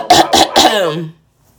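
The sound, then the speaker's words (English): A fairly loud throat clearing: three quick rough bursts followed by a short voiced, gravelly hum that fades out, with no talking. “I had to clear my throat real quick.”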